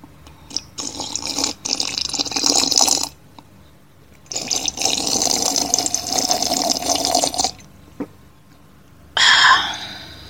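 Drinking water: two long, noisy stretches of liquid sounds separated by a pause, followed by a short breathy gasp at the end. No one speaks.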